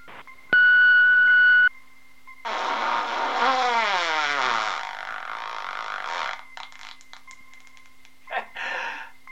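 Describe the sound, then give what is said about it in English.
A single loud, steady answering-machine beep lasting about a second, followed by a longer rushing, whooshing noise with falling swept tones and some scattered clicks. “Leave your message after the beep.”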